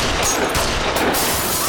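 A loud, rapid burst of gunshots from a gun kept in a purse crackles without pause, the harsh pops blurring into one continuous, dense volley for under two seconds, with no voices.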